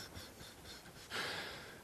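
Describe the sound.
A voice imitates an effortful grunt: soft breathing, then one forceful, breathy exhale pushed out, fading over the final moments.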